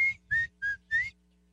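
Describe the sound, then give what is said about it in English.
A male American swamp sparrow's song: four evenly spaced, clear whistled notes with a slight upward sweep, repeated at a steady pace over a low background rumble. “did you know that the male swamp swallow sings a song that's been around for 1,000 years?”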